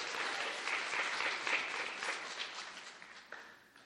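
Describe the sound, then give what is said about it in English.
A crowd claps and applauds together, a dense steady patter of many hands that holds for a few seconds and then gradually tapers off. “Someone give me a hand clap for that.”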